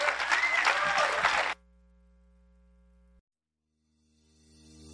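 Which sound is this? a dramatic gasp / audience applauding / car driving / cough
audience applauding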